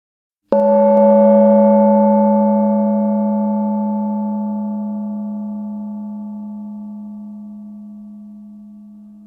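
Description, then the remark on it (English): A single gong strike, sounded to begin a hypnosis session, rings out with a sudden attack, then a deep, steady tone with shimmering overtones slowly fades over about nine seconds. There are no voices. “The gong is going to sound and then the hypnosis will start.”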